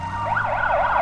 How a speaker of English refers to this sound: The wail of a siren, up to 140 decibels, both of which far exceed the threshold at which sound can damage a human's ears.